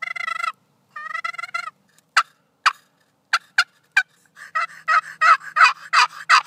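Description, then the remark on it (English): A handheld, handmade box-style turkey call mimics a gobbling turkey: two raspy trilled bursts, a few sharp isolated clucks, then a loud rapid run of yelping notes, with no talking. “He says when she gets older, if she wants to go turkey hunting, he'll remove a screw, the lid will hinge, and the turkeys will hear.”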